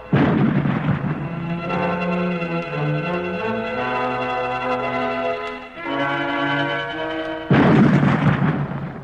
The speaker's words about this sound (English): Then we're sure Kincaid can't be lucky enough to have rain come after they start firing the gun. They'll know it's a fake.